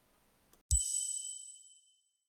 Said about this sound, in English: So here come the chimes. Let's go.